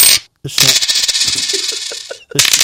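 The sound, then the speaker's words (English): A loud sound effect of a shower of coins dropping and clattering together, a bright metallic jingle of many rapid impacts lasting about two seconds, with brief bursts just before and after. “Extra coins today. We threw in a couple of extra.”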